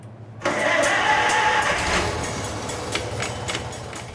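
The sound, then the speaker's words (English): The engine of a 1954 Farmall Super MTA, an International tractor, on a family farm kicks in abruptly after a brief quiet moment, then idles with a loud, steady low rumble and a rough, chugging texture. Nobody speaks. “This week, we're going to check out a Farmall Super MTA with some deep family roots.”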